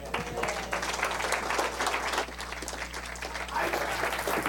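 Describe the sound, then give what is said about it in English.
A church audience at an evening service applauds for God steadily for several seconds, a dense, sustained wash of many hands clapping at once, with a low hum underneath. “If you guys give it to God, let's give Him a stronger si es para round Dios, of applause.”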